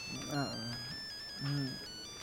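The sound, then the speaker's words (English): A phone ringtone plays the theme music of New Rally X, an old Namco game from around 1980, as a thin, beeping retro arcade-style melody in steady electronic tones, moderately faint, while a voice sounds twice over it. The phone goes off in a study stall in a classroom. “So it's actually the theme music from New Rally X, which is like an old Namco game from like 1980.”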